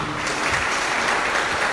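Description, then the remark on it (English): A crowd applauds steadily as candidates for City Council District 40 are introduced, a dense wash of many hands clapping at an even, sustained loudness with no voices standing out. “So I'm going to ask that after those introductory applause, you try to limit the applause and any other calling out so we can get to as many questions as possible here over the next hour or so.”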